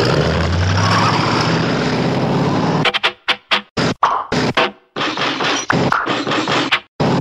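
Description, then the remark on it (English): A steady, loud rumble of passing traffic and idling engines at a bus stop on Samara Drive, the last stop of the route, fills the first few seconds, then breaks into choppy bursts of street noise with brief gaps of near silence. “Right now we are on another, we're at my stop, still on Samara Drive, the same road.”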